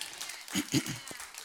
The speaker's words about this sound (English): Now, that is worth an applause right there.